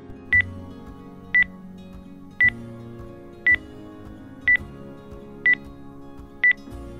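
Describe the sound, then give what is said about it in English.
Seven short keypad tones from a phone being dialed, spaced about a second apart with a slightly uneven rhythm, each a crisp beep over a low background hum of music or ambience. “just give me your number first”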